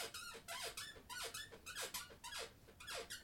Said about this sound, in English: No, that can't be the intro. We've already talked about the squeaky chair in the intro.